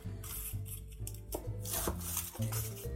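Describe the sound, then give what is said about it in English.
A knife chops a small yellow onion on a cutting board in a series of sharp, irregularly spaced strikes with a rasping, slicing texture, over a steady low background hum. No one speaks. “All right, so we're gonna get started by chopping our small yellow onion and a clove of garlic.”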